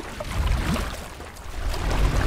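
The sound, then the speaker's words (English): A steady low rumble of a large boat moving through water, with wash and splashing over a continuous engine-like drone, fairly loud with no speech. “And what it shapes for us is a large boat. We're getting closer.”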